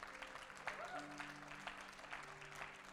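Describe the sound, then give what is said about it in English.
A crowd applauds steadily, a dense, continuous patter of many hands clapping, with a few voices cheering and calling out underneath, loud and sustained throughout. “Come up, guys. Let's cheer.”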